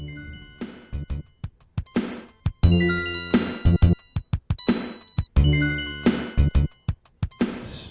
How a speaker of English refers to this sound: Very beautiful bass and a sprinkling of the bells. It's a funky track.